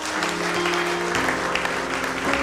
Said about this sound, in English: Can you give the Lord a clap in the house?